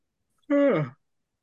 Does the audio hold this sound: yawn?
yes